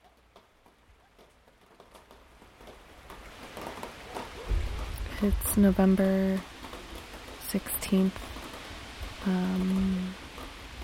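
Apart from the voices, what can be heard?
rain falling at night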